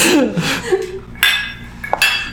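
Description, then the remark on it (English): Glasses clink together in a toast, two bright, ringing taps about a second apart, after a moment of murmured voices. “So anytime we say the word framework, we will all take a drink.”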